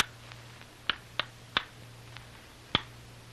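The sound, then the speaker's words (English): A coded signal knock tapped on the rock door of a cave: four sharp, dry raps in an irregular rhythm, a quick pair then a pause before a single final tap, with faint ticks between and a low steady hum. “During a lull in the noise, the code signal is tapped out on the rock door of the cave.”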